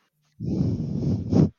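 A loud, rough breath rushes into the microphone for about a second, swelling into a stronger puff at the end, then another breath begins. No one speaks.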